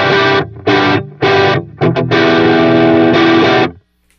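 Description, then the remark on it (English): Heavily distorted electric guitar, wet effects off, played through a Piper Drive stacked with the Edwards, plays a loud riff of chunky, choppy bursts, a couple of quick stabs, then a long sustained note ringing out before it cuts to silence. No one speaks. “And let's stack that with the Edwards. You can really hear that gain coming out.”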